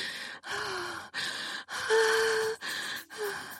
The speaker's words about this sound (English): Too much! Too much! I say with a huge gasp. He removes the wand in his mouth from my pussy as I pant my way fully down from coming.